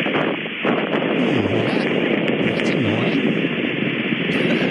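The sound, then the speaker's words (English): A voice imitates one long, unbroken hiss, like a snake's hissing, a steady, loud breathy rush of noise held evenly for several seconds with no pauses. “I describe it as like one long hiss.”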